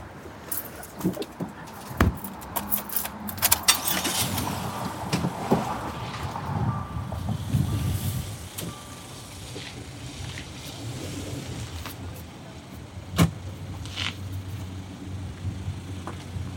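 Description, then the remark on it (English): A car maneuvers while being parked, with a low engine rumble while a steady, repeating reversing beep sounds for several seconds, followed by a few sharp clunks and knocks. “Oh my God, what a shit parking job.”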